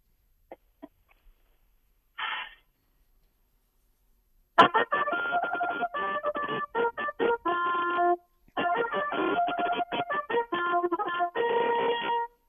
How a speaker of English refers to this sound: But listen, before we start off this interview, I think it's only fitting if we ask you, can you play for us the call to the post that you're going to be playing in about 8 hours or so? Sure. Let me switch the phone for the trumpet.